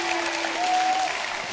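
An audience applauds an audience member called up on stage, a dense wash of many hands clapping at a constant loudness for the whole short stretch, with a faint steady tone running underneath.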